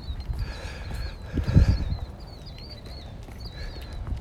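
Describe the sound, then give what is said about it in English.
Birds sing in high, warbling phrases that repeat steadily through the whole stretch, over a low rumbling background with a few soft thuds partway through. No one speaks. “Hear the birds.”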